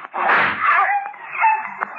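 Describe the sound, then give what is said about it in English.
A dog gives a rough, loud bark, followed by a few high, thin whimpering whines that rise and fade over the next second or so. “Reckon that dog won't attack anyone else.”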